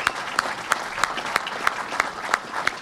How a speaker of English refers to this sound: Thank you, Governor Cuomo. Thank you, thank you, thank you. A round of applause for Governor Cuomo.